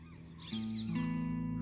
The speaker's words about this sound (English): And all these birds are flying.